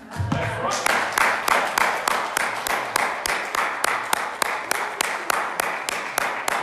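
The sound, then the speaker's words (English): Steady, rhythmic hand clapping by a preacher who has laid down the mic during a sermon, about three sharp claps per second, continuing evenly throughout over a constant wash of background noise, with a brief voice at the very start. “I think I'm going to lay down the mic and clap my hands right there.”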